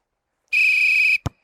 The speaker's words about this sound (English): All right, there's the whistle and the kickoff for our preview.